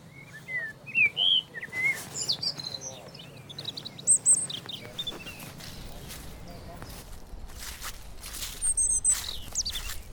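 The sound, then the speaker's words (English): Several birds sing and chirp in bright, scattered phrases among trees along a walking path, with a soft insect-like trill and low ambient rumble underneath and occasional rustling or footsteps. “You can also hear lots of birdsong.”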